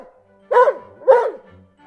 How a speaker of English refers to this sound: Timmy barked in delight, and not even Uncle Quentin frowned at the tremendous noise. Good old Timmy.